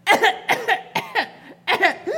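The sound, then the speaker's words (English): A young child coughs in a quick series of short, raspy bursts, mostly in pairs, with brief pauses between them. Fairly loud, with no talking. “Okay, cough into your sleep.”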